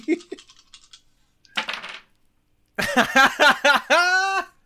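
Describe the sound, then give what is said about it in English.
Three dice clatter and tumble across a hard table in a quick burst of small clicks, followed by a brief rattling roll, then a person starts talking. “Three dice don't fail me.”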